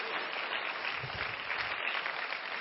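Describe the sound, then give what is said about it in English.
The New Covenant audience claps together as a clap offering to the Lord, a dense, steady wash of applause that holds at an even, fairly loud level for the whole stretch, with no voices standing out. “Let's give the Lord a clap offering for his glimpses.”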